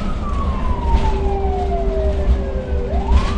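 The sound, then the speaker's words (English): An ambulance with lights and siren going on a Friday evening in Wellington, its driver grappling with early evening traffic: the loud siren sweeps slowly downward in one long wail, then starts climbing again, over a steady engine hum and low rumbling traffic noise. “The ambulance I'm in has its lights and siren going, the driver grappling with the early evening traffic, trying to get us to the person in need as fast as possible.”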